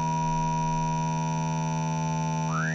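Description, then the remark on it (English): A steady, buzzy synthetic oscilloscope-audio tone, a sawtooth wave in the right channel with the left channel multiplied by a sine wave of the same frequency, with a dense stack of even harmonics, holds for nearly three seconds, then a thin whistling partial sweeps upward near the end. No voices. “To get this spiral into the shape of a mushroom, we need to multiply our left channel with a sine wave of the same frequency as the sawtooth.”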